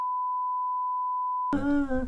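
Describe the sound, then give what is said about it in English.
A single steady electronic beep holds one pitch for about a second and a half, then cuts off as a voice starts speaking. “Is this a beep beep beep beep?”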